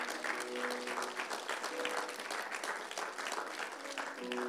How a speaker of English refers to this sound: We can clap that up